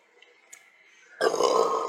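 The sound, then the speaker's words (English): A loud, rough burp bursts in after a second of near silence and rumbles on to the end, followed by a hiccup, with no talking around it. “Excuse me, I did not be. Wow. Followed by a hiccup.”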